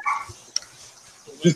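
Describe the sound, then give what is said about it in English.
A dog barks in two short bursts, one at the start and a louder one at the end, separated by a quiet stretch of faint background noise. “Ambient dog bark.”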